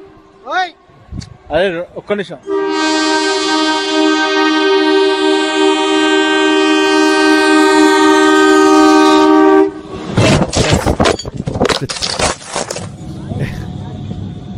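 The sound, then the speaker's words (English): A train horn blares loud and steady for about seven seconds, then gives way to the heavy rumble and clatter of the train passing along the tracks. Brief voices come just before the horn. “Did this guy really want views so much that he was willing to, you know, experience a brush with death on these train tracks?”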